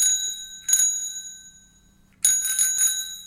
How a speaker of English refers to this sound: Any guesses on that one? I'll play it for you again. Here it comes. Yeah, that's a bicycle bell.